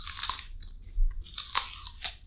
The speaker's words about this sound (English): People listening to this program are just hearing two people eating an apple. It's really like crunch.